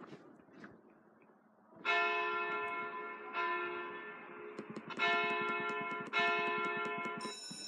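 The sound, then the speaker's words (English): A loud bell, rung at the end of a PE class, rings out with about five strikes, its bright metallic tones sustaining and overlapping, after a couple of seconds of quiet rumbling background. No one speaks. “Okay, I rang the bell in time.”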